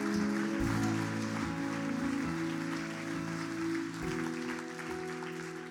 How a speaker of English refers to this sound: Amen. Can we give the Lord a clap? Amen.